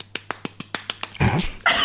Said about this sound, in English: I'm going to clap.